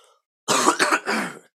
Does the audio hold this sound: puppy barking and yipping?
no